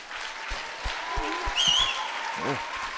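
Audience applause: a steady patter of many hands clapping for about three seconds, with a few louder individual claps, a short high whistle and a brief vocal whoop near the end.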